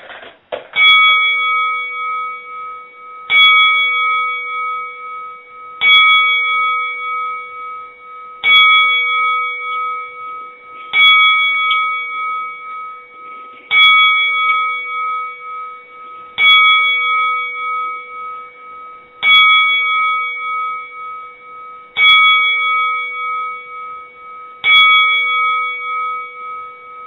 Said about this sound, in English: So I'm dedicating this show to my buddy Ward Wilson, and I'd like a few moments of silence for a tin bell salute at this time.